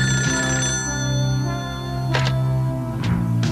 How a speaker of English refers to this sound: So we fade back to the Tracker Mansion. We hear the phone ring.